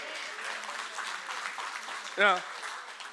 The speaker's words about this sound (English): Now, ladies, don't clap too loud.